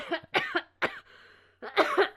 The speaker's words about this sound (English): I told you to quit all that coughing and crap.